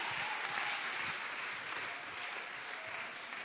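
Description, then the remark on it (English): An audience claps their hands for the Lord at a church service, steadily, in a dense, continuous wash of applause that holds at an even loudness throughout, with a faint murmur of voices beneath. “Clap your hands for the Lord and stand to your feet.”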